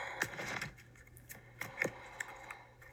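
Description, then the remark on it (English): Quiet shuffling of a deck of oracle cards: soft papery rustling broken by a handful of irregular crisp flicks and snaps, with no one talking. “I'm not a great shuffler.”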